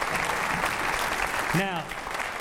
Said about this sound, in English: I think we ought to clap on that.